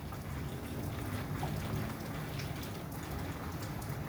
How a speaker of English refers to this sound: I feel it's so special for me. I feel like God trying to calm me down by sending the rain.